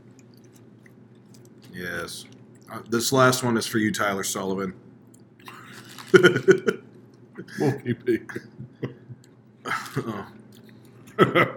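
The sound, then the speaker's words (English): Crunchy, wet chewing of tacos in uneven bursts, mixed with brief speech and a surprised exclamation from people talking between bites. “Two tacos left. One for me.”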